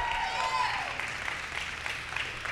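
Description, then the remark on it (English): An audience applauds a couple and their baby invited up onto the stage, a dense, steady wash of many hands clapping that holds at an even, moderate level for a couple of seconds. “Give them a great big round of applause.”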